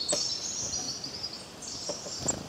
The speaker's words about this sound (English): The silence here is loud, and even the animals seem to have noticed the absence of people. Only the birds chirping merry little tunes break the silence.